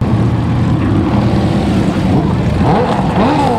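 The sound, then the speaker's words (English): Several motorcycle engines rumble loudly in a thick, continuous growl, then rev higher in rising sweeps near the end as the bikes pull away from a downtown White Castle, heading for Memphis. “Rev them up. Rev them up.”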